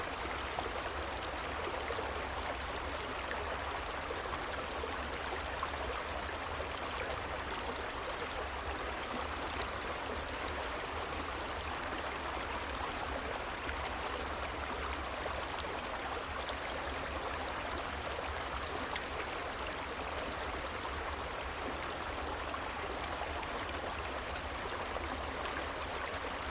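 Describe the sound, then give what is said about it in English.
A creek flows steadily, its water making a continuous, even rushing and babbling with no breaks. The sound stays soft and constant throughout, and no voices are heard. “Connected with the earth as you let yourself fall asleep by this quiet creek, knowing no matter what comes, the mountain is strong, stable.”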